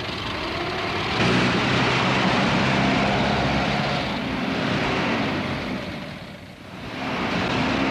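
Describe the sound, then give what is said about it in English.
Racing cars roar past at an auto race, a loud, continuous engine drone that swells, briefly fades around the sixth second, then surges back. No one speaks. “And there's plenty of speed at an auto race once they get going.”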